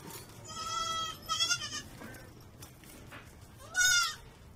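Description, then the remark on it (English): Working goats behind a chain link fence at the back of a nursery lot in a city bleat in a few loud, wavering calls: two overlapping cries early on, then a pause with soft farmyard background noise, and one more strong bleat near the end. “Yes, there are real goats here.”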